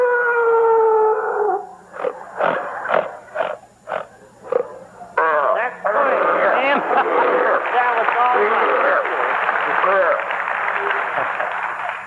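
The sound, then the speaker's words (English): Sharky, a performing animal, imitates the roar of Leo, the MGM lion, loudly: a drawn-out howling tone, then about six short rhythmic grunting barks, followed by a long stretch of dense, noisy sound. “You're all familiar with Leo, the MGM lion, of course. So, Sharky, let's have it.”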